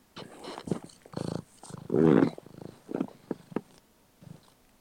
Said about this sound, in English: That is annoying. It's a cat.